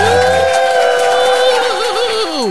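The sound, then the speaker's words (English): A loud, sustained whooping cheer, one high voiced 'woooo' held for a couple of seconds with a wavering pitch that slides downward at the end. “Let's give a real loud cheer.”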